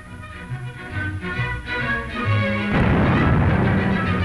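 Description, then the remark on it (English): A camouflaged circus cannon fires a human cannonball with a single loud boom partway through, cutting across brassy band music and leaving a broad, noisy roar that lingers to the end. “human cannonball. He's known as the Great Wilno, and though the cannon is camouflaged”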